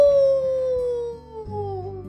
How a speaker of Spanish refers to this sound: Una mañana en el bosque se escuchan grandes aullidos. ¡Au, au, au, au!